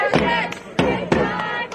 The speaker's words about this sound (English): While everyone in the background chants, "Thank God for abortion,"